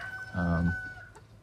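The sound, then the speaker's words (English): A chicken in a chicken run gives one short, throaty call lasting under half a second, clear, over a steady faint background hum with no one talking. “And do the fruit trees go all right with this intensity of chickens?”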